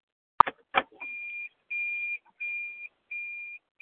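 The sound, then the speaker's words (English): A few sharp clicks, then a steady run of high electronic beeps from a participant's unmuted phone on a group call line, each about half a second long with short even gaps, repeating four or five times at moderate volume. “Oops, somebody needs to mute their phone.”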